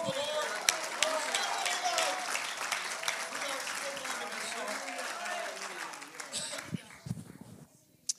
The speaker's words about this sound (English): Let's clap our hands.